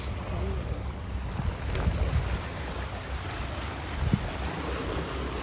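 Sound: water waves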